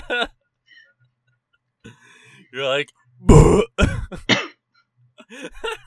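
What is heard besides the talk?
coughing and throat clearing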